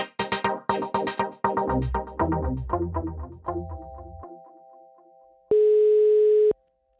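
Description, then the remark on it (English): A quick run of chiming tonal notes fades out, then after a short pause a single steady telephone dial tone of an outgoing call for an interview sounds clearly for about a second before cutting off. No voices. “When I called Jesper Tegge, I began the interview by asking him about the origins of the phone conversation.”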